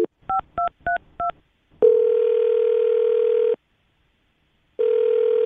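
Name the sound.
phone dialing and ringing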